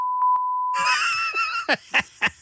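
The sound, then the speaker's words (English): A steady, high-pitched censor bleep tone holds for about a second, then cuts off as a burst of voices and laughter-like sounds takes over. “They're going to be using that beep machine a lot if you continue with this.”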